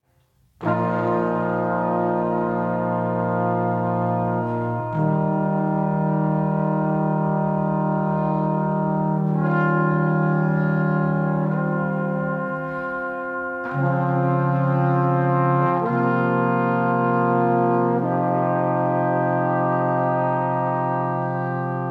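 Slow drone music built from dense, sustained harmonic tones that hold steady for seconds, shifting chords every few seconds at a constant loud level, with no voices.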